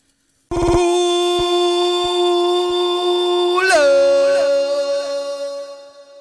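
A mobile phone ringtone plays loudly, a sustained electronic melody with a sharp shift in pitch partway through, sounding alone with no talking.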